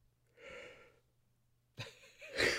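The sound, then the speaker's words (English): A soft, drawn-out breathy yawn, followed by a sharper intake of breath and a louder, airy exhale at the end. “When I just yawned, you're like, oh, people are dying.”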